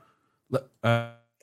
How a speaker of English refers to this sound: I'm sorry. I think I heard a puppy barking.